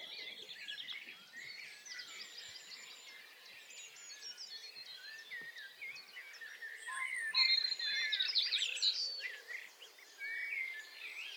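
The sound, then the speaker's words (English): A dense dawn chorus of many birds singing at once just before sunrise, while the sky is still dim: overlapping chirps, trills and whistles in layers, steady throughout with a brighter, louder burst of song near the end. “The birds are really starting to sing now.”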